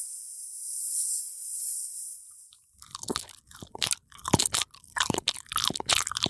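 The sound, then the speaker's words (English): A steady high hiss fades out, then hungry pet snakes feed with wet, irregular crunching and chewing sounds, loud snaps and gnashing bursts in quick uneven succession, with no voices. “Now, my pets, my sisters, my poor hungry snakes. You may feed.”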